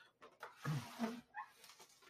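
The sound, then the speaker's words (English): Faint bird chirps and calls from outside a window where bird seed has been put out to attract them, a few short scattered notes over quiet room tone, with a soft rustling thump partway through. “We've been putting bird seed outside of our window, and that's attracting the birds, which is lovely because that means it's getting a little bit warmer, and very okay with that.”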